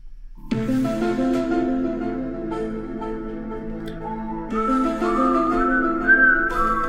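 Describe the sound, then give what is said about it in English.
Someone whistles a TV theme tune, a slow, eerie melody of held, gliding notes that rises louder and higher toward the end, with no talking. “Whistle along if your Friday nights weren't football games and parties, but X-Files on Fox.”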